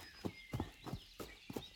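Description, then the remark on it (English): Pony hooves clip-clop as the ponies move away together, in a steady, even rhythm, about five distinct hoofbeats at a walking pace, moderately loud, with no voices. “he nodded his head at Dapple Gray and one or two of the other men horses, and two or three of his closest friends among the men ponies. They moved away together.”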